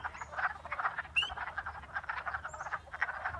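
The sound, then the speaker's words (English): A dense chorus of frogs in a pond croaks continuously in spring, many overlapping rhythmic calls forming a steady pulsing wall of sound, with a few brief higher chirps cutting through. “As the season progresses, different species of frogs will join in this chorus, and perhaps I'll record more then.”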